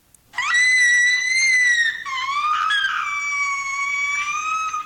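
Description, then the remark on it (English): An 11-year-old girl opening a present lets out a long, shrill, high-pitched scream of excitement, held loud for several seconds with a slight dip and rise in pitch partway through. “That's excitement. Oh, really? That's actually about an 11-year-old girl opening a present, and it's so exciting.”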